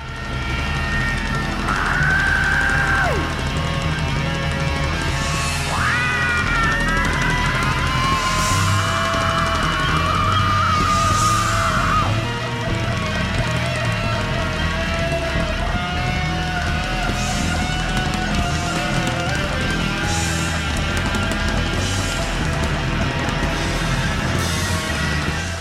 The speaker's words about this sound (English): belts out a scream and everyone involved just wails on their instruments with no rhyme or reason. Don't try to pick out any melody. On this track, there's no form, no structure, no tune,